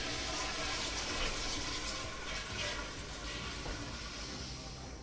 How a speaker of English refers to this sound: Specifically, by the way, you're in a club bathroom. I apologize at the beginning that somebody just flushed the toilet, sent one away.